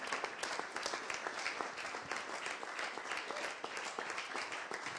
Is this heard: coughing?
no